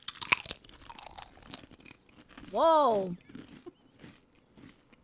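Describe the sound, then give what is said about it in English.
Crisp, crackly crunching of thick potato chips, thicker than Lay's and like Utz and tasting like baked chicken, being chewed in quick irregular bursts, interrupted midway by a single loud drawn-out exclamation from a voice. “I would say the consistency, it's a little thicker than like a Lay's. It's kind of like an Utz.”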